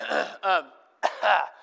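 Someone clears their throat twice in quick succession, each a short rough, gravelly rasp with a brief voiced catch, separated by a moment of quiet.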